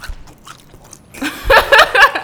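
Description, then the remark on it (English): A loud crunch of biting into a crispy, juicy fried chicken drumstick, with a burst of crackly chewing noises following a quieter moment at the start. “Yo, y'all gotta Y'all gotta hear the crunch.”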